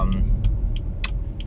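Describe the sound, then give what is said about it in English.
A voice mimics a fast car engine with a steady low rumble, punctuated by short hissy bursts every third of a second or so, heard alone for about a second and a half. “Ooh, you hear that fucking engine, baby? Ooh, am I driving a fucking fast car?”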